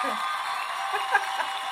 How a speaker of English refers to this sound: Oh my god, is there a sound that I can look for that's just like I don't know. We're gonna do the cheering. Yeah.